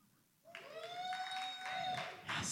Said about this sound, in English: Give us a round of applause if you've ever heard of us.